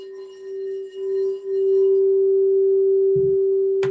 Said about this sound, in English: And I, for me, the easiest way to do that is by playing sound medicine. So using like one of my sound bowls, like my crystal bowls, and playing this.